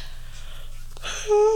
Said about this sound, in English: I apologize for these yawns. It's 9:22, bedtime's coming up, but like a grandma.